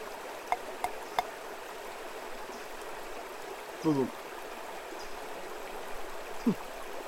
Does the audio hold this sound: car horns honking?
no